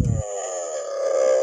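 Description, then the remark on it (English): A purported Bigfoot groan recording: a long, drawn-out animal-like groan, low and sustained with a rough, harmonic drone, starting with a brief low thump and holding steady at a moderate loudness for over a second. “Wait, let's hear the Bigfoot.”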